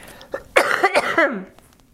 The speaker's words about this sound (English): Okay, cough coming up. Hang on.